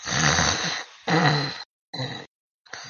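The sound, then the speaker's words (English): A person imitates snoring with four raspy snorts, the first two long and loud, the last two shorter, separated by brief silences. No one speaks. “I'm snoring.”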